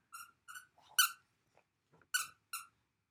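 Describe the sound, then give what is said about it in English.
A dog chomps a squeaky toy repeatedly, five sharp high-pitched squeaks in an uneven rhythm with soft rustling between them, fairly loud, with no talking. “He just wants to be part of the conversation. Well, now he's not going to squeak it.”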